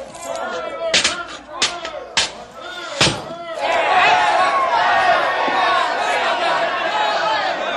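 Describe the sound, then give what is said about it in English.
A few sharp thuds and bangs ring out, then a dense crowd of angry young men's voices swells into a loud, continuous roar of shouting that holds steady to the end. “The angry lads realize that somebody new and different is standing before them.”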